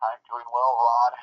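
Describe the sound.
A voice of an interview guest speaking over a phone line, thin and narrow with the low end cut off, clear for a brief moment.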